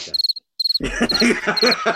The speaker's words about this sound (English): Crickets.